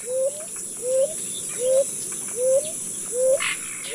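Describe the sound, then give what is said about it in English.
A ground dove, a small dove of the American tropics about 6 inches long, coos in a steady series of about six short, soft, upward-sliding notes evenly spaced, with a faint insect hum in the background. “At the small end are several species of ground doves of the American tropics, measuring 6 inches, not much bigger than a sparrow, and ranging from bright cinnamon brown to dark blue.”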